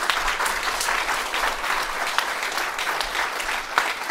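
A live show audience applauds the evening's tech operator steadily for about four seconds, dense overlapping claps at a fairly loud, even level with no one speaking.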